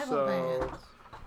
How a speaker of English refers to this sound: excuse me, as I burp.